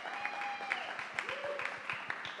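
An audience at a live show applauds steadily, dense clapping with a few whistles and whoops rising above it; no one speaks over the sustained ovation.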